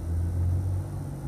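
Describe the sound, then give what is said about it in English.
A steady, low aircraft rumble, like a private jet passing overhead, holds a deep droning hum with faint engine tones throughout, with no talking. “Sorry, guys, there's a really cool plane flying ahead of above me. Like a private jet.”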